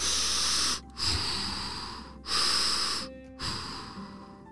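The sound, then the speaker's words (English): A female elephant breathes and snorts through her trunk in four long, loud, airy blasts separated by brief pauses, with no talking. “was breathing through her trunk, and that gave Connor an idea”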